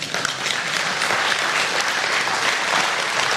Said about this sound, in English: That should be some clapping on that.